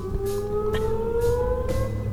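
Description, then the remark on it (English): A steady, wailing emergency test siren from Artesia's large oil refinery, played every Monday at 6:30 p.m., holding a sustained mid-pitched tone that slowly rises, with faint pulsing bursts of hiss repeating about every half second over low rumble. “It's an emergency test alarm that the oil refinery plays every Monday at 6:30 p.m.”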